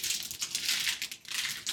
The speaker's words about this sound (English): So, everyone, we are adding the hops in to the beer. That's going to sit in that for about...